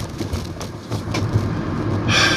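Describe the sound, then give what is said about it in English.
A car rolls over railroad tracks, a steady low rumble punctuated by a few soft thumps as the wheels cross the rails, with a brighter hiss of road noise rising near the end. “As I'm about to go over railroad tracks, you might hear a little rumble in my mind.”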